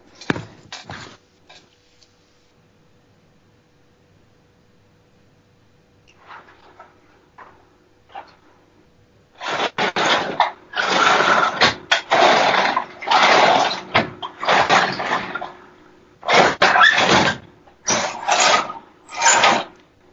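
Wooden drawers scrape and rumble as they are pulled out and pushed back, a run of loud, rasping slides in quick succession after a stretch of quiet with a few faint knocks.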